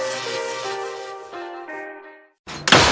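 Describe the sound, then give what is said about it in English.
A melodic, tonal jingle fades out, then after a brief silence a loud, sharp, forceful slam of a door being slammed by kids bursts in near the end. “Hey, you kids, quit slamming my goddamn door.”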